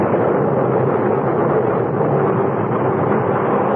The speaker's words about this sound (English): We could still see the faint outlines of the ship when suddenly, without warning, a cloud of black smoke shot up from her bow. And within moments, a great explosion blew her apart from stem to stern.